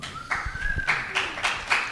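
A single man claps his hands for himself several times at a steady, unhurried pace, each clap sharp, with a faint tonal murmur in the background.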